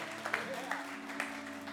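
Faint, scattered clapping from an audience, a soft wash of hand claps with a few sharper claps standing out, over a steady low hum.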